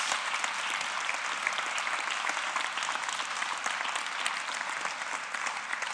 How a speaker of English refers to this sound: Can we show Johnny a huge round of applause?